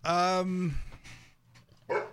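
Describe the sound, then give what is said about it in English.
A dog, Chico, a service dog, lets out a loud, drawn-out bark, followed by quieter shuffling and a second short, sharp bark near the end. “life as a service dog”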